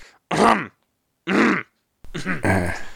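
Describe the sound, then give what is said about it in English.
A man clears his throat several times, three short rough bursts separated by brief silences, the last one more drawn out and voiced. “I had to clear my throat.”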